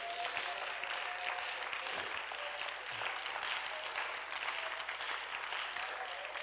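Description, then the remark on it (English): An audience at the Palace of Praise in 2018 claps steadily and densely while shouting to the Lord, a dense wash of hand claps with faint cheering voices mixed in, filling the whole stretch at an even, sustained level. “Somebody clap your hands and shout it to the Lord.”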